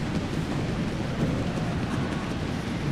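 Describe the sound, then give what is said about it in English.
Many feet stomp at once, blending into a dense, steady, low rumble like a downpour with thunder, a human imitation of a storm that stays loud and even throughout with no talking. “And now stomping.”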